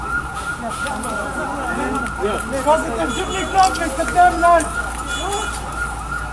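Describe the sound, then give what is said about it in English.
An ambulance siren wails continuously with rising and falling tones, somewhat muffled, as the ambulance carries someone away from an explosion scene with a huge traffic jam, over a busy background of overlapping voices and street commotion. “Someone is being transported by an ambulance away from the scene.”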